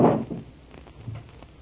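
A secret wooden drawer is pulled open with a dull thump, followed by a few faint scraping clicks and rattles as it slides; no one speaks.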